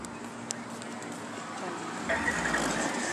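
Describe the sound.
A car drives along a street, its steady road rumble swelling louder toward the end as it approaches without slowing down, with people talking in the background.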